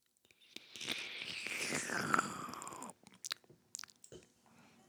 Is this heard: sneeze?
no